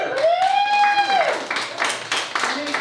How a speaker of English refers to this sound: You can clap.